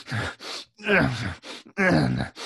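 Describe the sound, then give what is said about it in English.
A voice imitates a man grunting and breathing heavily while cleaning and shining his shoes, in a series of rhythmic bursts, strained exhales and groaning sounds alternating with brief pauses. “And another gross scene was him grunting and breathing while cleaning his shoes.”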